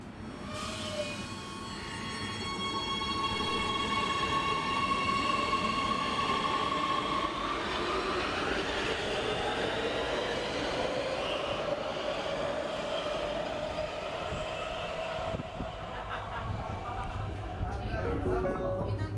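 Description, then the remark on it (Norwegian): A T-bane metro train runs along the line near Økern station with a steady, loud rumble and rising electric motor whine, the tonal pitch climbing and shifting as it accelerates, continuous throughout. “Med Lørenbanen har annethvert tog på Grorudbanen fått en snarvei fra Økeren via Løren, direkte til Sinsen”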